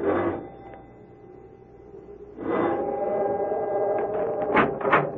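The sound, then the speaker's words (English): A doorbell chimes at a large oak door at the top of stone steps in the rain, its ringing tones lingering and humming steadily after a struck onset, then sounding again partway through, clear with no voices. “However, after a moment, she made her way to the large oak door and rang the bell.”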